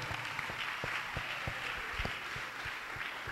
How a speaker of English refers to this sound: Glory to God. He is here. Let's clap for the Lord.